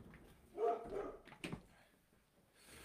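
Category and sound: animal, puppy barking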